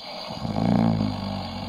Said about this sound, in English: We'll send it to the snore meter, see what that thinks of Amy's weekend.